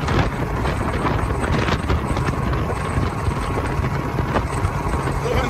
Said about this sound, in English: We're on 275 on the moped. Hey, these little hills, I guess, kills a moped. It sure does.